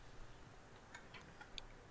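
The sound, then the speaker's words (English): A clock ticks in a short run of light, crisp clicks, about four in quick succession, quiet against a faint background hiss with no voices. “We've all got magic watches, and we like double tap the face or something, and a big CGI clock appears behind us, and yes.”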